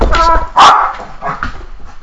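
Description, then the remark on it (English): A pet dog barks a few times, loud sharp barks with brief pauses between them, followed by quieter yips and whimpering sounds. “So for some reason, this guy is wants to bark.”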